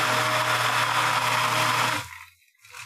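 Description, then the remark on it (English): A loud immersion blender flash-blends broken-up ice with pineapple juice, whirring steadily for about two seconds with a constant motor hum, then cuts off abruptly, leaving near silence and a faint clink. “We're going to mix them together and then flash blend it with an immersion blender and see how it goes.”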